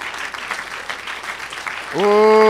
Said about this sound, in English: Let's stand together. Come on, let's stand. Come on, let's clap our hands now since you're up. Hallelujah.